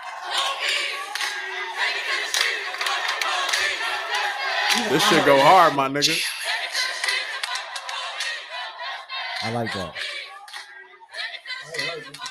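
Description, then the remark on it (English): A music track plays, driven by dense, layered rhythmic hand claps with a crowd-like roar behind them, while a man's voice briefly talks over it a few times. “It's the clapping. That's what it is.”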